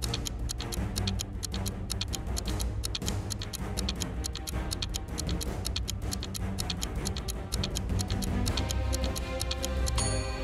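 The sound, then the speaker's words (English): A clock ticks steadily and rapidly for a ten-second countdown, crisp, over a dense low droning backing that swells slightly toward the end, with no voices. “Your 10 seconds are ticking.”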